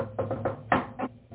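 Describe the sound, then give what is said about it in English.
A rhythmic knocking on a door: a quick run of raps, a louder accented knock, then a couple of spaced final taps, forming a playful signature pattern with no talking. “This is the oldest thing in the world, but I've got my signature knock. Guess what it is? Just guess.”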